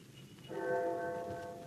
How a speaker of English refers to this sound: No idea how long I worked until I heard the clock of St. Jude's in the distance.